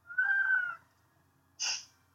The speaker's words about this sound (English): Sorry, my cat's trying to give me some input.